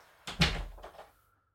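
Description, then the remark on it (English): A door swings shut with a quick latch click and a solid, heavy thud, followed by a brief rattle that fades out within a second. “Alright, shut the door, please.”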